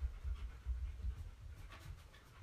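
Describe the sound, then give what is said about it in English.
A dog named Luna pants in quick, steady breaths, a soft rhythmic huffing that carries on through the whole short moment with no one talking. “Didn't that dog? Never a dull moment with Luna.”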